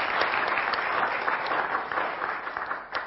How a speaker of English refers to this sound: Okay, now the first thing is, while they're all giving you a massive round of applause for being so brave coming forward, I want to mix yourselves up.